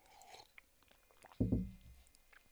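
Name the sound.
sipping coffee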